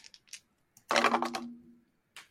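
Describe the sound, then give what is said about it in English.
Dice clatter across a hard tabletop: a few light clicks, then a loud rattling tumble that fades as it settles, with one last click at the end, the dice landing on a 9. No one speaks. “That is a 10. it's a 9 on the dice plus 1.”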